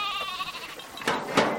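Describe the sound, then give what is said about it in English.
Sheep bleat in a wavering, quavering chorus in a sheep corral as a man wades into the flock and snags a sheep with a shepherd's cane, followed by two short scuffling bursts like hooves shuffling. No one speaks. “Begay opens the gate and wades into the mass of hooves and horns.”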